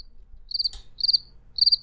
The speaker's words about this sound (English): Crickets. Oh, do I have a cricket thing? Hold on. I think I do.